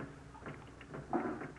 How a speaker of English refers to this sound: For as we look in on the Rileys now, we find them listening to the pitter-patter of the raindrops dripping into assorted pots, pans, and pails placed at strategic points in the living room.